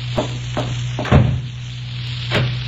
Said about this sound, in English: Oh, excuse me for banging the door.